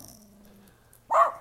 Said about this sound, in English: Oh, there's a couple of white dogs.